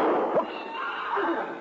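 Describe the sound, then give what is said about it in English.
A horse whinnies briefly, its wavering cries rising over a steady, rushing noisy background, moderately loud, with no voices present. “Get back onto that horse and get out of here.”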